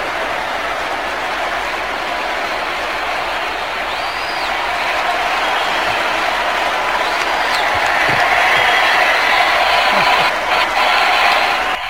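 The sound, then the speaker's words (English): A crowd cheers and claps in a dense, steady roar that fills the whole stretch, swelling slightly louder toward the end with no clear voices standing out. “These people are cheering.”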